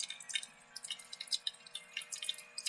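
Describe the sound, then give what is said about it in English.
A coffee machine brewing, with a steady stream of quick, irregular drips and gurgles over a faint low hum, moderately loud, no voices. “Coffee machine working.”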